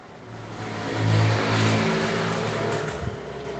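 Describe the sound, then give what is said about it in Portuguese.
A man's motorcycle engine drones steadily with low harmonic tones, swelling louder around the middle as it revs and passes by again, then easing back into a sustained hum. No one speaks. “Olha, ele volta. Ele tá voltando, o cara da moto.”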